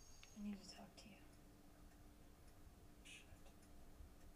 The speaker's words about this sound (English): I don't know where this scene is taking place, but I really don't care for the ticking clock in the background. I can only assume that it's at the hotel.